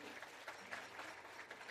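An audience claps steadily, a dense, even wash of many hands with no single claps standing out, fairly soft in level and continuing without pause throughout.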